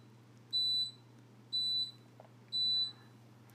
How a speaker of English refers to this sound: Sorry, that's my dishwasher. Between a mosquito and a dishwasher, this is turning out to be a very eventful episode.